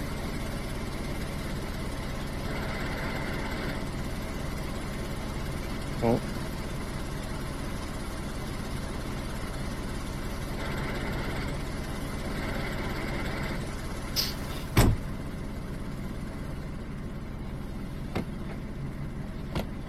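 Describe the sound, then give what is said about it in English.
A car engine idles with a steady, low rumble throughout, joined by a few brief clicks and knocks near the middle; faint voices may murmur underneath. “No, I think they're trying to get the other car out.”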